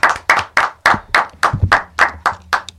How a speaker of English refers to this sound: Let's clap it up for …. Clap it up for the …. BMA 2016 Producer of the Year.